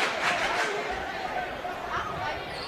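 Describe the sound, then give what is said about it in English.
A vocal basketball crowd in a gym, at a game with Rockvale playing, keeps up a steady, dense roar of overlapping voices and shouts, with brief swells of cheering rising out of the constant hubbub. “Very vocal crowd here in this one.”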